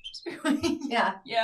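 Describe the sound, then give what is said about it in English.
A person's voice imitates dolphin squeaks: a quick run of high, strained, chirping vocal squeals, fairly loud, in a few short bursts over about a second and a half. “I actually think maybe I could be a dolphin.”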